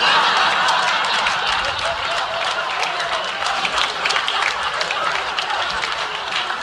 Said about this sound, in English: Stop clapping before y'all make me smile.